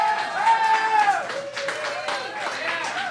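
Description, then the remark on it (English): An audience at the Blockhouse claps steadily in a dense wash of applause for itself, with a loud sustained whistle or whoop riding over it at first and scattered cheering voices afterward. “You, the audience, come on, give yourself applause.”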